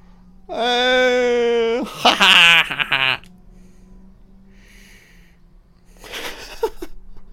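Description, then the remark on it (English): Over-the-top screaming in a horror film: a loud, drawn-out scream holds a steady, strained pitch for over a second, then breaks into harsh, raspy shrieks. After a lull with a low hum, a shorter, fainter cry follows. “I shouldn't laugh, it's just the fucking screaming. So over the top.”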